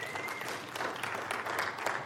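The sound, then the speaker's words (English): An audience claps steadily, many hands making a dense, even patter of applause that holds at a moderate level throughout without any voices over it. “You can clap for that.”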